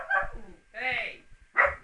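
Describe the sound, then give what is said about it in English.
A dog barks three times in quick succession, the middle bark drawn out into a whiny, yelping tone, with brief quiet gaps between each. “Be quiet, puppy!”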